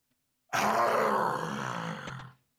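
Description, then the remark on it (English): A loud, deep monstrous howl bursts out and holds for about two seconds, a rough, groaning roar with gritty harmonics before it cuts off sharply. “At once you hear the terrifying howl again.”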